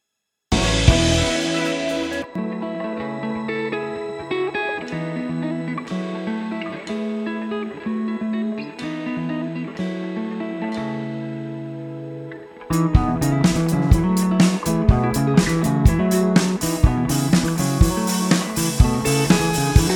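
A music mix plays back in context with no talking, an EQ placed after the reverb, a deep reverb-washed bass beneath sustained tones; around the midpoint it shifts into a fuller, busier section with sharp, rhythmic percussive hits.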